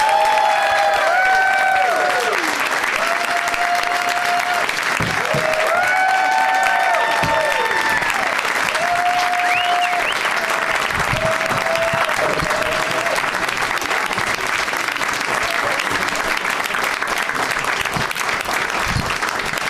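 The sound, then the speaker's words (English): Loud, sustained applause from a large studio audience welcoming Ravi Patel, Ian Edwards, and Sarah Silverman, with scattered whoops and cheers rising over the steady clapping throughout. “I'll give a big warm welcome to Ravi Patel, Ian Edwards, and Sarah Silverman.”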